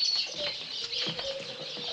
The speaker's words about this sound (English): Here we are, lovebirds. Those canaries. Doesn't this make you feel awful? Doesn't what make you feel? Having all these poor little innocent creatures caged up like this. Well, we can't just let them fly around the shop, you know.